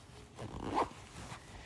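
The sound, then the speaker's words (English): A short zipper being pulled closed on a small zippered container after a blood sugar test, one quick rasping sweep that rises and peaks before trailing off, fairly quiet with no talking. “And zip up my little container.”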